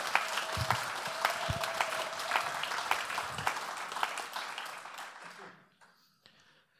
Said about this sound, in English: Let's give Yared a round of applause. Isn't that amazing?